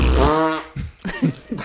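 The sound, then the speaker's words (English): A loud, buzzing mouth-made fart noise, a brief wet raspberry blown by a voice into the mic, followed by a few quieter vocal sounds as people talk. “And we're making fart noises so now.”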